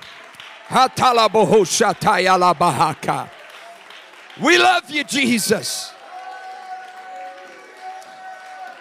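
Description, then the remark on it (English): A church audience claps their hands in praise to God, a steady wash of applause and crowd noise. It rises after loud, emphatic shouted voices and continues on its own with faint tones underneath. “Now, would you put your hands together all over the house and just give God a great big hand clap of praise?”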